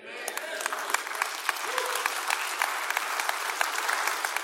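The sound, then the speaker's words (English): An audience applauds steadily during a sermon, a dense patter of many hands clapping at once, with scattered sharper claps standing out and faint voices mixed into the crowd noise. “Y'all are clapping as if I'm done, but I'm not finished yet.”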